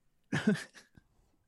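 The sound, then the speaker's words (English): A raspy COVID cough, one harsh burst followed by a smaller second hack, then quiet. No one speaks. “COVID cough, but that's okay.”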